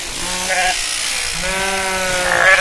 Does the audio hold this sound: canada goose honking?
no